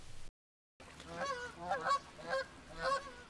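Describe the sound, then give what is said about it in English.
Several geese honk in a loose series of nasal calls, clear, after a brief gap of silence at the start, as the geese depart Vermont. “I started the Muse Mentors podcast a year ago, just as the geese were departing Vermont.”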